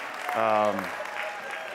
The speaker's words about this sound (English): If I was in a chocolate church, someone would have given a hand clap of praise for their pastor.